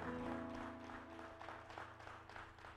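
A worship audience claps steadily in applause to Jesus, a dense wash of hand claps over a low sustained musical hum. The applause stays fairly even, easing slightly toward the end.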